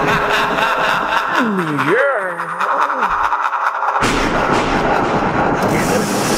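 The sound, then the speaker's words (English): A chainsaw snarls and revs, its pitch swooping up and down in a few quick surges, then gives way to a harsh, steady roar of loud noise that fills the rest. “I think it sounds like a chainsaw. It's getting louder.”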